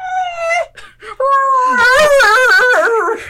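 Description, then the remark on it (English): A husky wails in long, wavering, high-pitched vocal howls, the pitch sliding and warbling. A brief whine comes first, then a sustained, loud, yodel-like moan that rises and falls. “Husky whale.”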